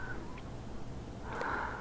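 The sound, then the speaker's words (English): Faint, soft breathing, a quiet airy hiss that swells into a slightly louder, sniff-like inhale near the end. No voices. “Listen to them breathing.”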